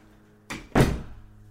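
door being closed

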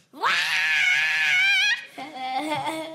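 person screaming

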